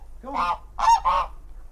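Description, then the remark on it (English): Geese on a smallholding honk three times in quick succession, loud, each call a brassy, nasal blare with a short gap before the final pair. No voices are heard. “The geese don't play a very large part in our activities.”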